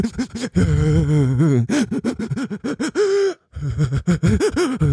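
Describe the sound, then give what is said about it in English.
A voice imitates ragged, sobbing breaths, the kind of breathing after a spanking or a fight, a rapid series of sharp, voiced gasps with hitching, wavering pitch, loud, with one brief pause before the stuttering gasps resume. “It's almost like the same type of breathing that you do when you really get your fucking ass whooped by your parents or something.”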